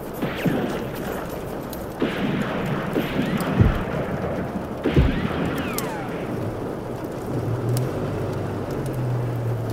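A car engine rumbles amid steady noisy wash, with a couple of heavy thumps like doors shutting as people hurry back into the car, then a deeper engine hum builds toward the end as the car pulls away.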